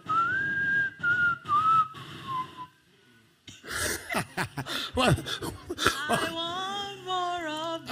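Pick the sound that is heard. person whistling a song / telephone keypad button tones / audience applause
person whistling a song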